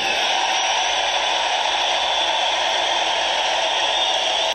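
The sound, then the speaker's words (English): A large rally crowd cheers in a loud, sustained roar, voting by cheers for the slogan "Make America Great Again", a steady wash of voices and noise with no single speaker standing out, holding level for several seconds before cutting off abruptly. “Let me just hear by your cheers what you like.”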